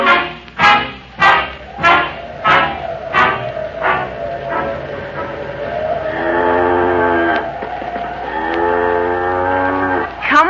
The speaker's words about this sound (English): she isn't a bad cow, is she?